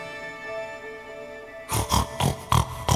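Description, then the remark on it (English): A pig grunts five times in a quick, uneven series of short, rough snorts, fairly loud, following a stretch of soft, steady tonal hum. “I love you, pig buddy. I'm gonna keep you safe for the rest of your life.”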